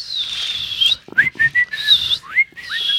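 person attempting to whistle

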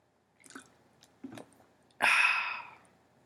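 drinking water

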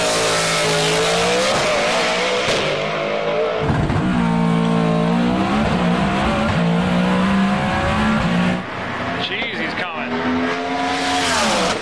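race car engine running

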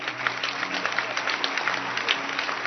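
audience clapping hands

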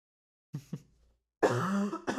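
coughing

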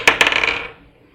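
dice being rolled

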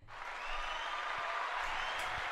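hands clapping

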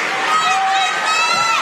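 basketball crowd cheering

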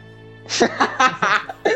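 coughing

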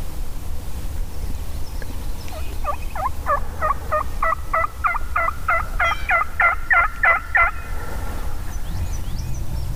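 wild turkeys gobbling

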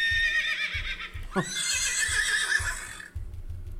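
horse neighing and whinnying

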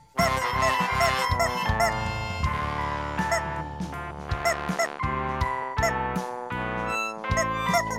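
chicken clucking

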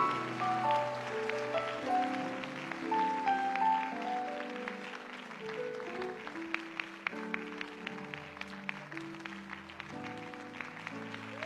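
audience clapping

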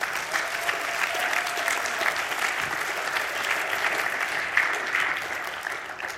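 audience applause

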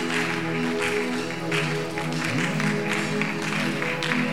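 audience clapping

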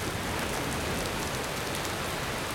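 storm rain

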